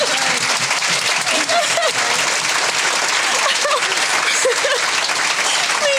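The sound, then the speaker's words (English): Sustained audience applause, a dense, steady wash of many hands clapping at full volume for several seconds, with faint voices and cheers mixed underneath. “Can we just applaud that, please?”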